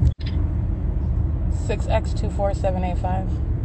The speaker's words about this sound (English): Yep, that is Go Logistics. That's a large truck.